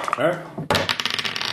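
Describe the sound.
A brief voice, then dice rattle and roll out of a dice cup for a game check in a quick burst of hard, clicking clatter, fairly loud.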